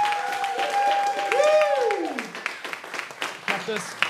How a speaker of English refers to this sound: You've been a great crowd. We've got a few thank yous to give. First of all, let's give a big, warm round of applause